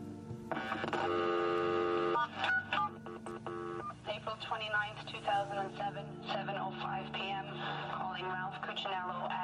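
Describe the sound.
A telephone dialing tone sounds steadily for about two seconds on a call a woman places and records, then a voice begins talking, thin and slightly muffled as if heard over a phone line.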